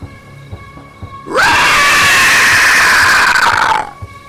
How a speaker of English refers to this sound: As Kalthi, as you're trying to corral everyone to group up, there is this god awful screeching.